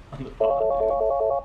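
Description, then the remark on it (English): A telephone rings with a loud electronic warble, a rapid pulsing trill of bright tones lasting about a second, after a brief murmur of background sound. “We're not allowed to pick up the phone until the third ring.”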